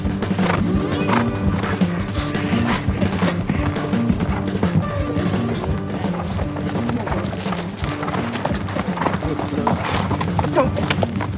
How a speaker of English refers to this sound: So all the runners get down into this wash first, come up into this barren desert, and pretty quick, on your right, come the horses.